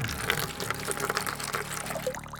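Coal oil pouring steadily from a container, a continuous splashing gurgle with a rising pitch as it flows, moderately loud, with no voices.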